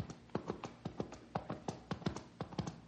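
Hooves of a horse carrying a rider clip-clop in a steady, uneven rhythm, a dozen or so sharp hollow knocks coming in loose pairs, clear with no voices over them.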